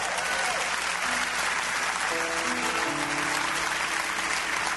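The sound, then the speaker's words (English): A crowd claps steadily and loudly for a preacher speaking about himself, a dense, unbroken wash of hand claps with faint voices rising through it partway along. “I wouldn't be clapping for that.”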